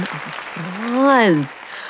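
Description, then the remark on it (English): A short burst of clapping-like noise with a voice letting out a rising and falling cheer over it, lasting about two seconds. “Round of applause.”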